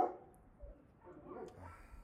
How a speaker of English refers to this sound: Right now, there's dog communication across the prairie.